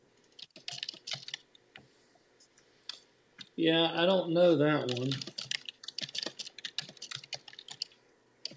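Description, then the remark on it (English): Rapid, steady clicking of keys on a computer keyboard, with a brief stretch of a man speaking in the middle before the typing resumes. “Are you typing it up?”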